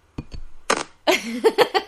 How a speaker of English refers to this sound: Shall we cheers? We shall.